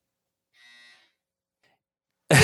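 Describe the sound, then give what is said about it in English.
A clothes dryer buzzer sounds once, a steady, harsh, mid-high electronic tone lasting about half a second, followed by quiet and then an abrupt loud burst of noise at the very end. “The dryer is speaking for you. It was a much shorter one. Yeah, it has variable lengths of buzz.”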